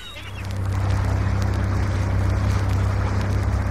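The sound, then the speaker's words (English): A small boat engine starts up on a test run and settles into a steady, loud, low droning hum with a rough, churning texture, running continuously without a break. No one speaks. “Listen, can I take her out for a test run? It might also be the fuel line.”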